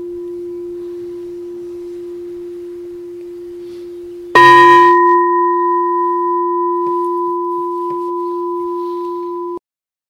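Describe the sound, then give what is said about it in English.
A meditation bell is struck once with a bright metallic onset, then rings on in a long, steady, shimmering tone that sustains for several seconds before cutting off. A faint hum lingers underneath beforehand. “Hello, bell.”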